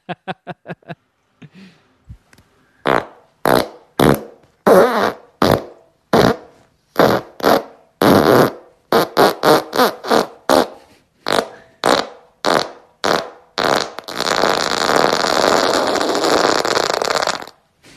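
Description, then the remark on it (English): A recording of a man's farts: a rapid string of loud, sputtering fart sounds, twenty or so short bursts in an uneven rhythm, ending in one long, rough, crackling blast lasting several seconds. No one speaks. “He has titled this file, Ass Queefing Warlord.”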